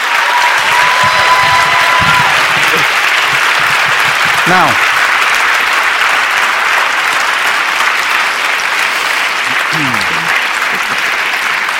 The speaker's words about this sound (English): So a hand of applause, please, first.